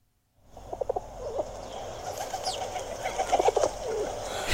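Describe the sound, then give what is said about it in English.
A pigeon coos in a few soft, throaty bursts, once near the start and again toward the end, over a steady outdoor hiss. No one speaks. “And he had an odd relationship with a pigeon.”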